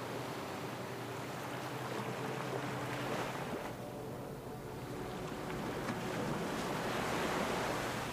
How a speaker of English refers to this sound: The ocean waves crashing at your side.